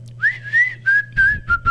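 A clear whistled melody from the film Robin Hood: five or six short notes that glide and hold at a steady pitch, with a faint low hum underneath and a bit of low rumble near the end.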